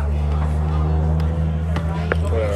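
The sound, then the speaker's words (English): A truck's engine rumbles low and steady as it passes, a deep droning hum with faint background murmur and a few brief clicks over the top. “That was just a truck.”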